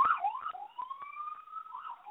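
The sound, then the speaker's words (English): A wailing emergency siren sweeps up and down in pitch, fairly loud, with a second siren tone layered above it as vehicles pass along a street. “My apologies for the, I'm obviously out in the street, so all these sirens going by, so my apologies.”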